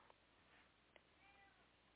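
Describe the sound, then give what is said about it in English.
A female cat meows with a drawn-out, wavering cry over a quiet background hum, with a couple of faint clicks earlier and no one talking. “I have a cat yelling at me, if you can probably hear that.”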